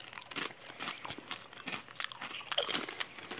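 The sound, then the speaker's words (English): Dry, brittle crunching of pita-style chips, unlike tortilla chips and with more bubbles in them, being chewed: a rapid irregular series of crisp bites and crackles at moderate volume with no talking. “These are more like, are they like pita chips?”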